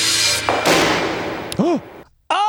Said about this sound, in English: drops the gun. It bangs.